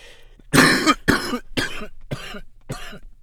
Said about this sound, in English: Excuse me. I briefly still had this cough, but it's going away slowly but surely, okay? I took some Mucinex DM this week. It's going away.